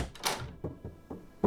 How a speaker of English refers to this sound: Door locked.